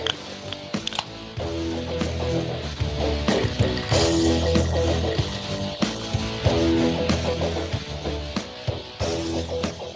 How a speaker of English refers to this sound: Well, you heard the can crack, you heard the ice rattle in the glass. That means the boys are ready for some phenomenal funky facts.